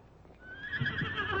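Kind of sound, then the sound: animal, horse neighing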